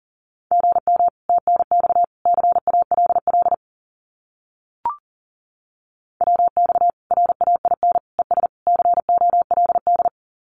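Fast Morse code at 40 words per minute sending common amateur radio QSO phrases: a single steady mid-pitched tone keyed in rapid dots and dashes, sent in two long runs separated by a pause with a brief click, no voices.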